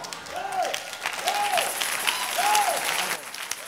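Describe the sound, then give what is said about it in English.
A large church audience claps steadily and densely throughout as a clap offering to Jesus, a sustained wash of applause with no pauses, while faint rising-and-falling vocal calls drift over it at regular intervals. “I have not completed. When I complete, Jesus deserves a better clap offering.”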